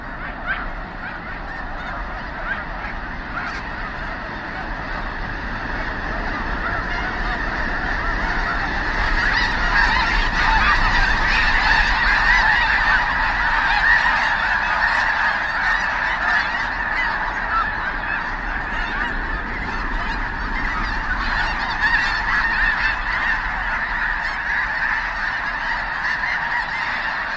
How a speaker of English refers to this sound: We leave you this week with the sounds that snow geese make, lots of snow geese. Lang Elliott and Ted Mack met a huge flock on a recent migration in the Rainwater Basin region of Nebraska.